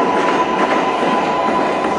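subway train in station

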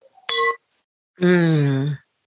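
wine glasses clinking

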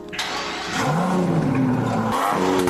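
car engine revving

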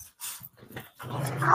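dog growling and barking

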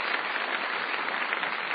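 round of audience applause

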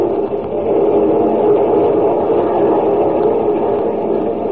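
train running on tracks

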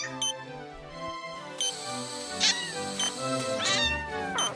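kitten meowing

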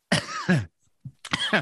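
cough

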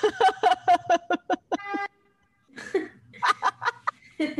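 car horn honking

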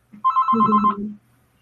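telephone ringing

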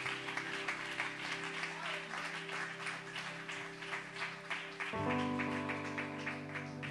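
audience clapping hands

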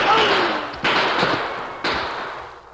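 gunshots

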